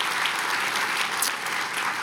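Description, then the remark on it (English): A church audience claps steadily, a dense wash of many hands applauding at a constant, fairly loud level throughout, with no voices standing out. “Again, let's give them just a hand clap.”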